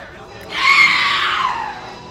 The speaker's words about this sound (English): Got her. Did you hear that banshee scream? I mean, she's a bad banshee.